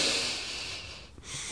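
A loud, forceful breath drawn sharply through the nose as a breathing exercise, a snorting inhale with a rushing, hissy texture, continuous, followed by a brief dip and a fresh surge of air.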